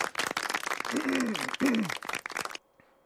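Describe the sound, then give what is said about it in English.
A crowd in a played clip applauds with dense, rapid clapping, and a couple of raised voices call out over it. The applause stops abruptly, leaving near silence. “I just love how they clap at them.”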